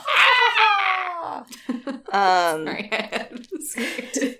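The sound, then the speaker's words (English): A person lets out a loud, theatrical scream that slides downward in pitch, followed by a second shorter wail and a few breathy vocal bursts. “Page to scream. Scream.”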